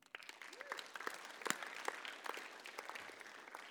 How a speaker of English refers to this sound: Fifth, final one, definitely a clap moment for this.